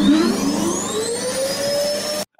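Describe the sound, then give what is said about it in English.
A vacuum cleaner runs loudly, its motor whine climbing steadily in pitch over a broad rushing hiss, then cutting off abruptly after about two seconds. “Well, at least since their hands were in the cookie jars, they have plenty of vacuums to pick up the crumb.”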